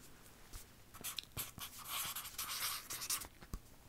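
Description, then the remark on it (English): A Sharpie marker squeaks and scratches across paper as someone writes their name, in short, uneven strokes with small taps between them, fairly quiet, with no voices. “but this is me holding it, but this is me writing.”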